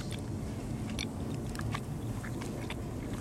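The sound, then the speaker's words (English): A person chewing food near the microphone, with wet, crunchy mouth sounds repeating in a steady rhythm, loud, over a constant low rumble of background noise. “Welcome to me chewing.”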